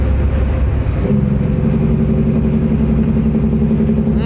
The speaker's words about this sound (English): That's a Jake brake. 100%. That's a big ass truck. Oh yeah. Dude, that listen to how long it is between shifts, because he's rowing that big old baby arm. So that's is that a big old Peterbilt? I don't know. Or is that a Kenworth?